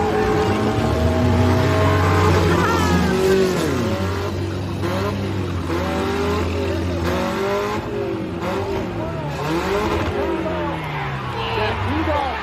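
Race car engines on a dirt track roar and rev continuously, their pitch climbing and dropping in overlapping sweeps as several cars accelerate and ease off, loud throughout the whole stretch.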